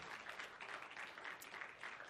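A church audience claps steadily for about two seconds for the church's graphic artist, a dense, even patter of many hands with no voices over it, staying fairly soft throughout.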